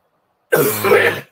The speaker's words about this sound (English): Bless you. Or you cough. Did I sneeze?